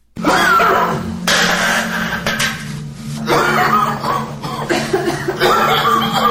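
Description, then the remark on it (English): Several people cough repeatedly amid heavy sheetrock dust in rough, overlapping bursts, loud, with a steady low electrical hum running underneath the whole time. “And it must have been rather dusty because for the first few minutes, there's pretty much nothing but coughing on the soundtrack.”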